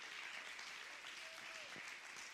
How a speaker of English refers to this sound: Clap your hands if you believe it.